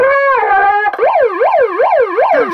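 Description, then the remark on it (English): A loud electronic siren starts on a steady tone, then switches to a rapid, rhythmic rise-and-fall wail that repeats about five times. No voices can be heard. “Let's sound the alarm.”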